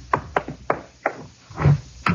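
Chief Backstrand's office door opens onto a squad room: several sharp wooden clunks in quick succession, a duller, heavier thud as it swings, then one more crisp knock at the end. No voices.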